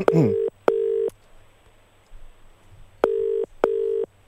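Telephone tones from a call being placed to the speaker's own phone number: two pairs of steady, fairly loud electronic beeps with a pause between pairs, over quiet background hiss, with a brief voice-like warble at the very start.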